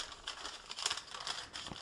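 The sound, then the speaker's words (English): Parchment paper crinkles and rustles in soft, irregular bursts as it is used to fold tart dough over berries, with no voices present. “It's actually easier to just use the paper as the folding tool rather than trying to do it with your hands.”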